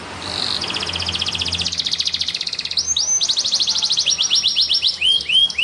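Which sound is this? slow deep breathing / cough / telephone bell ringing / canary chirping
canary chirping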